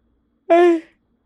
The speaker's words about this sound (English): Okay, yeah, right in the mic. What? I said, yeah, right in the mic. The yawn. Sorry.